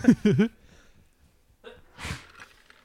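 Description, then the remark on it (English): A short burst of voice, a second of near silence, then a single sharp sneeze, breathy and explosive, fading quickly into quiet. “Bless you.”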